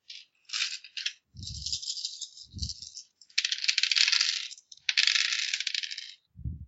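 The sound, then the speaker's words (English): Dice rattle and clatter in several bursts, shaken and tumbling with a few low thuds as they land on a surface. Fairly loud, with no talking. “I'll take a shot and give 2 dice of interference.”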